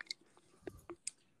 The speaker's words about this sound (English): Your mouth's just clicking. It's like, okay.